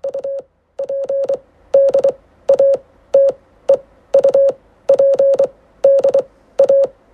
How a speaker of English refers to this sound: Oh, update. We need like a sounder for updates. Like the Morse code. Yeah. Little update sounder.